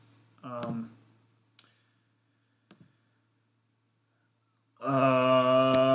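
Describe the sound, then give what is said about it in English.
A couple of sharp computer mouse clicks sound in a quiet gap, spaced about a second apart, between stretches of a man talking. “I had to go back there. I was clicking on something.”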